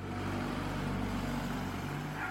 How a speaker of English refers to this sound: that kind of typifies the fact when you hear that, you go, oh, yeah, that's not a Ford or that's not like a Prius or something like that. You know that that's like a relatively posh car. You know it's a V8.